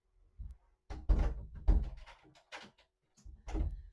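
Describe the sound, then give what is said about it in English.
A door is opened to let a cat out: a soft thump, then a cluster of clunks and rattles as it opens, followed by a few lighter knocks and a final thud. No one speaks. “So we've got the cat flap coming into here, and of course when I lock the door so I can do one of my videos, the cat stands there and meows until I let him out, bless his heart.”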